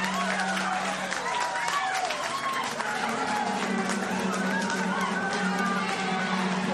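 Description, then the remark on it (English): A team in the garage cheers and claps as Tom Ingram wins the 2022 British Touring Car Championship, his first ever championship, a dense, continuous wash of applause with excited shouting voices rising over it, steady and loud throughout, with a low droning hum underneath. “And you can hear there, they are delighted.”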